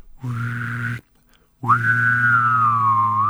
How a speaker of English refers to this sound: Do that thing where you can like whistle and hum. Can you do that? No.